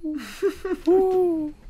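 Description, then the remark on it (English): A person imitates an owl with a few short hooting notes followed by one long, sustained hoot, fairly loud, voiced alone without other talk. “I can do a pretty good impression of an owl hoot.”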